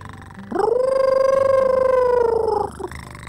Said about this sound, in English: I call it a wolf cat. It's part wolf, part cat. And listen to it. It purrs, and then it howls like a wolf, but it sounds different. See?